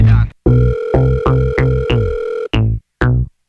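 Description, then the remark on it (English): A telephone rings with a loud electronic ringtone: a quick run of repeated pitched beeps, a brief pause, then two more sharp tones. “Yo, Jen answer the phone, no dog.”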